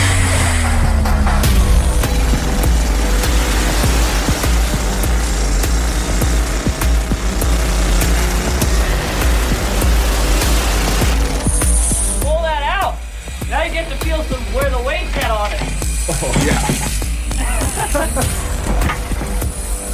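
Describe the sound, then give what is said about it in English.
A loud pneumatic rock drill hammers steadily, drilling holes deep into the rock face of an underground mine, a dense rattling roar throughout; partway through, voices rise over the continuing mechanical din. “And even more, they seem to like drilling holes deep into the rock face.”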